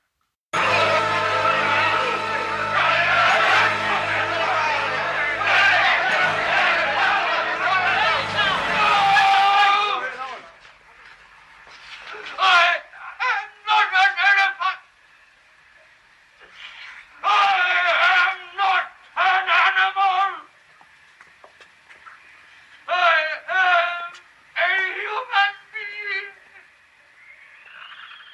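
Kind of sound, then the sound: crowd, crowd chanting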